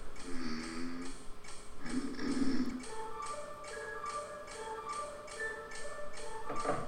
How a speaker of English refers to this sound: The ticking! Crocodile!